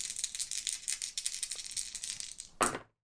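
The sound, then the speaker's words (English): Dice, an action die and challenge dice, rattle and clatter for a few seconds in a quick, uneven stream of clicks, ending in one louder knock as they settle. No one speaks. “I've got a 1 and a 6 on the challenge dice for a strong hit.”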